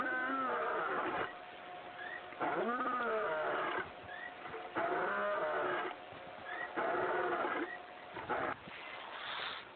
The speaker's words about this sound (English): Yes, that's an actual roar of a real lion. It doesn't sound quite like we think it might. At least I don't think so.